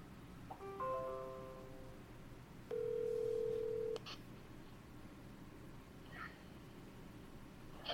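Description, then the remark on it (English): A phone line beeps during a call as another call comes in through Facebook: a quick cluster of short electronic tones, then a single steady mid-pitched beep holding for about a second over faint background hiss, with no voices. “I heard like a beep beep beep.”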